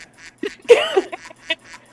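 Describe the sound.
A series of nasal duck quacks used as a buzzer, short honking bursts in an uneven rhythm with one louder, drawn-out quack near the middle, fairly loud with no talking.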